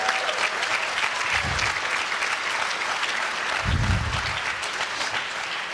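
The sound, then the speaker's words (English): An audience claps together as an offering of praise to the Lord, in sustained, dense applause, a steady loud wash of hand claps with a couple of low rumbling swells, and no speech over it. “Why don't you give the Lord a clap offering of praise in this house?”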